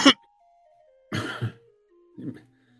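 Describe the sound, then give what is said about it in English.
A brief sharp cough, then a harsher double-pulsed throat clearing and one more smaller clearing, fairly loud, with a faint falling tone lingering in the background. “I only get a tickle when we're on the air.”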